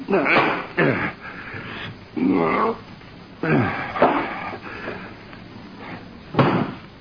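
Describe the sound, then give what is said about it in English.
A series of heavy thuds as a book is knocked off a night table and hits the floor, several bumps spaced unevenly, fairly loud, with muffled vocal noises in between. “I knocked a book off the night table.”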